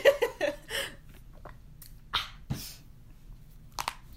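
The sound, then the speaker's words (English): Someone takes a sip of a drink, with a few quick slurping and mouth noises, followed by soft swallowing and breathy gulps spaced out over a few seconds. “Let me get a little sip.”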